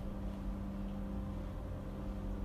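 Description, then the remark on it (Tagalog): A steady, low engine drone hums continuously with no breaks, a deep rumbling idle that stays at an even, moderate level throughout, with no voices present. “Bago ko sumapit dyan ay papatayin ko na ang ingay ng makina.”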